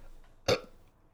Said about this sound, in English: Ooh, that was a gross burp.